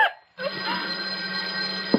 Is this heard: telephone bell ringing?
yes